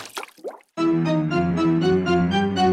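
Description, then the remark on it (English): A couple of quick wet splashes, then a run of rhythmic, evenly spaced drips over a steady humming tonal background, fairly loud, with no talking. “Creeping. Slurping. Smacking. Splashing.”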